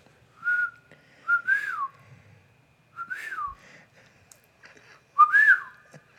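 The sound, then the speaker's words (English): Four whistled bird calls, each a bright, clear swooping note that rises and falls, separated by short pauses. A person whistles imitation calls to call a bird, and the final, loudest call is from a real bird. “If you'll just give me a second, I'm going to do some bird I'll calls.”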